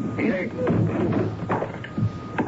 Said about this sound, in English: We'd better break the door down. Stand away. I don't know how to do this.